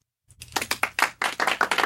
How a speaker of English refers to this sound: Round of applause. Definitely.